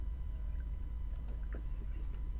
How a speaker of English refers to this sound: Chug it for charity. Yeah, there we go.